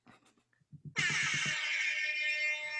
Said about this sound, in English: the Rasta Horn for Q